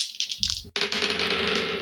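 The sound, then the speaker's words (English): Dice clatter and tumble across a hard surface in quick rattling bursts during a tabletop role-playing game, rolling a pair of 17s for an attack, followed by a short pause and then a sustained rolling rattle that continues to the end. “That's a pair of 17s on the dice.”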